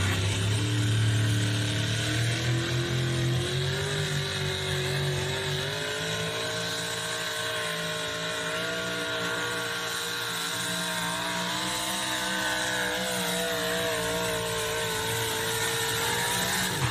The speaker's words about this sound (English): I actually heard a surge in RPM right here about 220 feet.